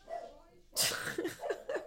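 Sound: dogs barking excitedly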